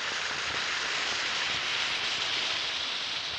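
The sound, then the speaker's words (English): An Alka-Seltzer tablet fizzes in a glass of water, a steady, bright hiss of tiny popping bubbles that holds an even loudness throughout, with no voices. “Just drop a tablet or two of Alka-Seltzer into a glass of water and listen to it fizz.”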